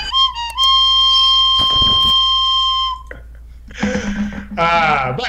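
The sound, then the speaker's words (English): A loud, steady, high whistle tone holds for about three seconds, broken briefly by a noisy burst, then gives way to wavering, sing-song vocal sounds. “That's the whistle I have to play to keep the mandatory fun goblin from jumping out.”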